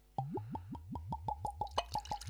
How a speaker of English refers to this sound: The pouring of the scotch into your Stark Industries cup.